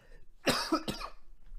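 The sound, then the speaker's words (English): Two quick, harsh coughs in close succession, fairly loud, with nobody speaking and only quiet background noise around them. “Sorry, had to cough.”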